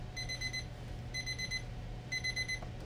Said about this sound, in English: Hold on, my stupid alarm just went off.